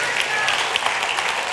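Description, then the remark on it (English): An audience claps in a steady, dense patter of many hands, with brief louder bursts scattered through the noise, holding an even level for the whole moment. “Don't clap yet. We're not at the end of the message.”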